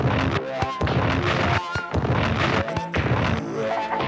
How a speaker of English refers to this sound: That was sick. The explosion's on beat. I know. It was, yeah, the explosion's on beat.